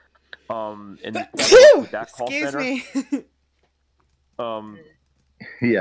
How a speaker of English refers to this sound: You need to ask again. I missed connections in the USA, but sometimes he missed what you said because of my sneezing. He's asking you to repeat it because my sneeze messed you up.